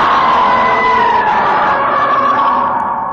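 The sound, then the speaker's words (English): The scream of Gamera, the giant movie monster: one long, loud, shrill wail held for about three seconds, harsh and siren-like, its pitch sagging slightly toward the end, with no voices over it. “We got Gamera screaming.”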